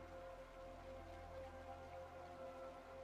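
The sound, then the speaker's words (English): Steady, soft rainfall makes a continuous even hiss throughout, blended with sustained, humming musical tones. No voices are heard. “Listen to the music, the rain.”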